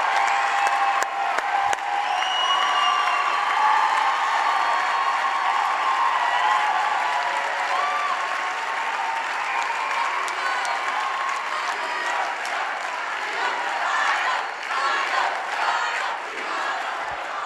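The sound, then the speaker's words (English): A large crowd roars with sustained cheering and applause for Kyle, loud and steady throughout, with scattered whoops and shouts rising from the mass of noise and no single voice standing out. “Kyle did the right thing, and he should be applauded for that.”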